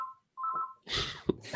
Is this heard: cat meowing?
no